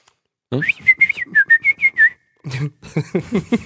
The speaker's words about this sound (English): Can you work on your whistle?